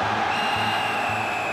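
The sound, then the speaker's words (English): A referee's whistle, blown to end a Marseille game, sounds as one long, steady, unbroken blast, shrill and fairly loud, held over a constant rushing wash of background noise with no talking. “Eventually, he puts his whistle to his mouth and blows.”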